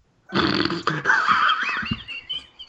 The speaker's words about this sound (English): Oh, now he's wheezing.